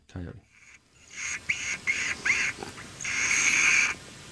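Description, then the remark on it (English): A lip squeak call for coyotes: four short, shrill, bird-like squeaks in quick succession, then one longer drawn-out squeal, fairly loud, after a brief voice at the start. “It's called the lip squeak of a coyote.”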